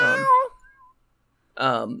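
A cat meows twice, close and fairly loud: a drawn-out, wavering meow, then a short pause and a second meow that slides downward in pitch.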